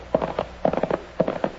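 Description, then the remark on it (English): Hooves of two horses from Cherokee Stable clip-clopping in a steady, quick rhythm as riders set out for Dobie City, west of Abilene; the hollow knocks fall in small clustered groups, clear, with no voices over them. “we started out for the toughest, most rowdy, and largest town any place west of Abilene, Dobie City, on two of the least spavined horses from Cherokee Stable.”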